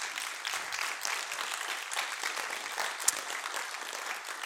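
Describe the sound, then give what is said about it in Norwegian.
A crowd at a church service applauds steadily, dense overlapping clapping that holds an even loudness throughout, with a single sharper clap standing out briefly near the end. No one speaks. “De trenger å få en applaus.”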